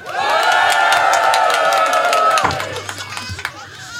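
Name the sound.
audience cheering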